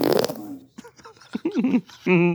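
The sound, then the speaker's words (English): A string of buzzy fart noises, starting with a rough sputtering burst, then several short squeaky blasts that wobble in pitch, ending in a loud, steady raspy one; the fourth in a series of fart sounds played back. “All right, and here's fart number four.”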